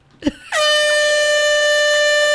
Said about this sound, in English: Oh, that's just an air horn. How do I turn that off? No, shut up. There we go. Sorry. trying out new actually horns.